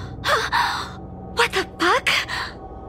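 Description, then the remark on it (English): A woman gasps sharply, followed by a run of short, breathy, shaky inhalations, fairly loud with no words spoken. “She looked towards the window, a gasp caught in her throat.”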